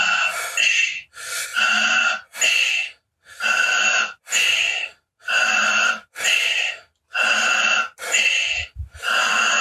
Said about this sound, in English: You can also breathe through the nose, but better through the mouth, goes easier. Okay, a little faster, second minute.